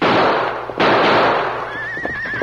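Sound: gunshots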